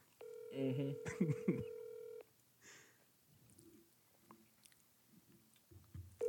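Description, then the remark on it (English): Electronic telephone dialing tones of a call being placed live on the Orange Wedge show sound for about two seconds, a steady held tone overlaid with quick higher beeps, followed by quiet clicks and soft rustling. “All right, let's give him a ring.”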